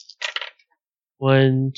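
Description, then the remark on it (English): A quick rattle of dice clattering across a table during a tabletop game, tumbling to a stop, followed by a brief voiced exclamation. “Come on, dice. Love me.”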